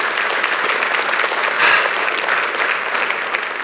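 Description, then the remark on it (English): An audience breaks into steady applause, a dense, even wash of many hands clapping at a fairly loud, constant level that swells slightly midway through, with no talking over it. “Oh, that's worthy of clap.”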